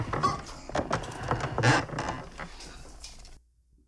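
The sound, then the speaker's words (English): Irregular creaking and scraping with uneven strained bursts in a recording being played back, steady for about three seconds before cutting off abruptly. Muffled low rumbling runs underneath, and nobody speaks. “It's just some creaking. Weird noise.”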